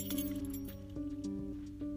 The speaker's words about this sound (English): Okay, that really freaking scared me. That was just my keys.